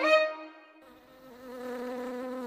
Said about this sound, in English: And finally, the noise of an angry bee is something we all may recognize, but some beekeepers believe they can deduce the well-being of their bees from the sounds that they make.